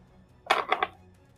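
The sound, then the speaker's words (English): A thrown phone hits a hard surface with a sharp clattering thud, then skitters with two quick bounces, fairly loud against a quiet background with no voices. “That was me throwing my phone.”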